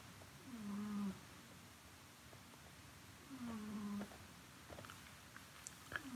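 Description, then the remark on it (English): A cat named Oreo snores softly, two slow drawn-out breaths about three seconds apart, each a low buzzing drone over a quiet, faintly hissy background. “That is Oreo snoring.”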